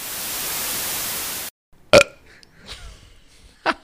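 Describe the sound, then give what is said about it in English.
Loud, steady radio static hisses for a second and a half, then cuts off abruptly, followed by a short, loud burp and some faint rustling. “Man, honey, you know we're just going to be flipping through static the whole time, man.”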